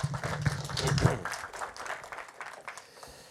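A church audience claps after Bible verses are read in Spanish, a dense, steady patter of many hands, loudest in the first second and gradually thinning and fading toward the end, with a faint voice briefly audible underneath.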